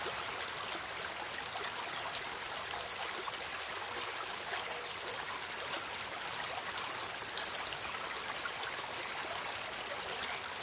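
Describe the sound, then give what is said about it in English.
A steady rushing river flows continuously, its bright, hissy water noise filling the whole stretch evenly, with no voices or other sounds breaking through. “Remove the remaining 5 golden leaves from your basket and repeat this ritual until all of the leaves have disappeared down the river.”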